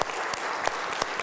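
A crowd claps together in a steady burst of applause, dense overlapping hand claps with a few sharper, louder claps standing out, no voices heard.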